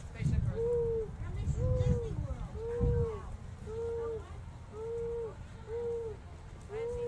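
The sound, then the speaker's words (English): A person mimics an owl, repeating about seven short, rounded hoots at a steady rhythm, with low rumbling background noise underneath. “Why are you being an owl?”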